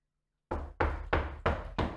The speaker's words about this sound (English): Oh. Sounds like someone's knocking.